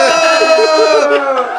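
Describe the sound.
A group of voices yells together in one long, loud, sustained shout lasting about a second and a half, holding a fairly steady pitch before easing off slightly at the end.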